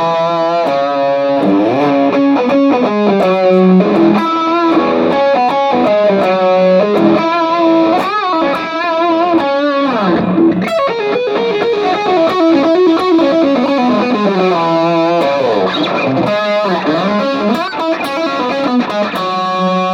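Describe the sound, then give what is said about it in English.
A heavily distorted electric guitar, played through a BEOD heavy distortion pedal with every control at 12 o'clock, plays continuously for the full stretch, with thick, saturated chords and riffs at a loud, steady level and no voices. “This is their heavier pedal. Here's everything at 12 o'clock, actually.”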